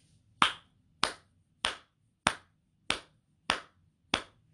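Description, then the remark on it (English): Seven sharp hand claps in a steady, even beat, about one every 0.6 seconds, clapping the beats of a song with four beats per measure; each clap crisp and equally loud with quiet gaps between and no voices or singing. “So what we're going to do is sing the song while clapping the beats.”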